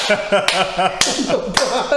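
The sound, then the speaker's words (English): Three sharp hand claps land about half a second apart, crisp, from a man clapping his hands at the streamer Speed in a video game, over a steady bed of voices talking in the background. “Speed turned around and the nigga started clapping his hands.”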